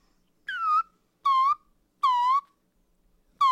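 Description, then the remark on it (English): A slide whistle blows four short, evenly spaced notes, each sliding downward in pitch with a slightly buzzy, harmonic tone. Nothing else is heard between the notes. “are you doing to my slide whistle?”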